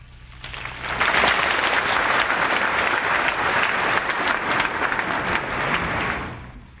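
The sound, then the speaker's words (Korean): Audience applause welcoming a teacher, swelling within the first second and holding steady as a dense, even patter of many hands clapping, easing slightly near the end. No voices are heard. “네, 스승님을 환영하는 박수를 한 번 더 해주시기 바랍니다.”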